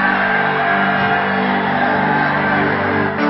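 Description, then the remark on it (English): A crowd shouts together in a loud, continuous roar that holds steady for a few seconds, dense, with many voices blending into one sustained wall of sound. “As you are shouting, it's getting off your neck.”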